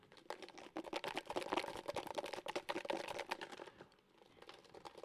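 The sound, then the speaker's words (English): Slips of Post-it note paper rattle and rustle inside a closed Tupperware container as it is shaken steadily for several seconds, a dense, clattering sound that briefly eases near the end. “Okay, so, snap all four corners of it shut. Shakey, shakey, shake.”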